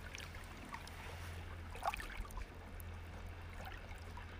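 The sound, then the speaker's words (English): A boat's low, steady engine drone hums as it moves by slowly across a quiet lake, soft, with gentle water lapping and trickling throughout. “So now we have a boat moving by slowly. So there'll be some big waves coming in from there.”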